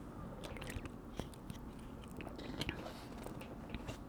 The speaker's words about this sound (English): And for those who want to know, yeah, I was drinking some water. Because it's like, yo, when I be talking and stuff, it's like, yo, my mouth become dry.